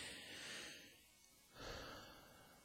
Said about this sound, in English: I'm, like, trying to stifle a yawn as I talk.